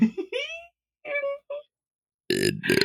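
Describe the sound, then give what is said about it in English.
A loud, rough belch erupts right up against the microphone, coming in two bursts near the end after a few short, wavering vocal sounds and a pause. “I just belched into the microphone.”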